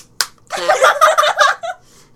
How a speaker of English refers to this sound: For those of you listening, she just smacked both of her butt cheeks.